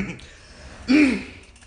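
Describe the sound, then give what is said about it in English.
A single short, gravelly throat clearing, a brief guttural burst rising out of near silence and trailing off quickly. “Clear my throat for a second.”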